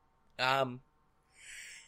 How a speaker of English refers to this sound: Okay, yawn. Oh, there's a yawn.